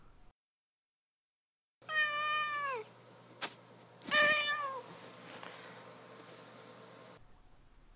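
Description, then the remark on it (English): A cat named Duarte meows twice, clear, with a short sharp click between the drawn-out calls and a faint steady hum underneath. No one speaks. “we'll move on to Duarte's Corner, where my cat Duarte will weigh in with his 2 cents on the book.”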